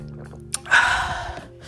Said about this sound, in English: Hold on, wait a minute. Let me just get one more sip. Hold on.